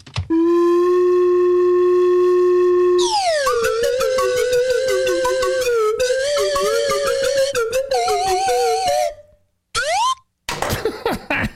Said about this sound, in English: I don't need any karma right now, but appreciate a good slide whistle duet.